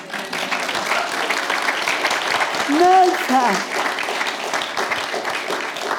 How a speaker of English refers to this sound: I think this woman deserves an applause.